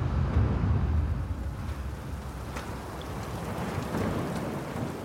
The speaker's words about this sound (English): He hasn't seen weather like this since they set sail. There's a strong, icy wind and a mix of snow, sleet, and hail pound the exposed deck.